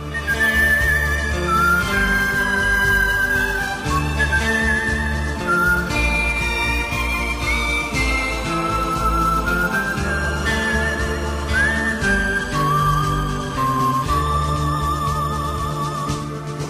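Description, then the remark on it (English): A clear, melodic whistled tune in a film score, with slight vibrato, glides and sustains over a full, steady musical backing of bass and rhythm, staying prominent for the whole passage. No voices. “which has some whistling that would make … want to leave the nest.”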